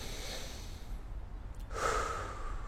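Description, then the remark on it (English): A single deep, airy breath drawn in and let out consciously while sitting down, soft and hissy at first and swelling louder near the end, with no talking. “Look, mustering the courage to do it right now while we're sitting down and say, I'm going to just take a deep breath.”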